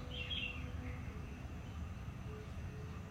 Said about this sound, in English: Sounds of the birds changing and shifting around us. Simply listen. Notice how they change and move maybe around. So that you have to shift your attention to keep listening.